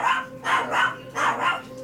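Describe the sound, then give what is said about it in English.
A dog barks repeatedly in quick succession, about half a dozen sharp, fairly loud barks, with no one talking. “I got to meet his dog, too.”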